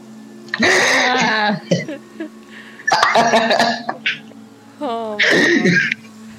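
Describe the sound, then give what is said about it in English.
A voice imitates a tabletop role-playing game character named Beans retching and coughing something up in three loud, harsh bursts, each a strained, gurgling heave with short pauses between. “Beans coughs up something.”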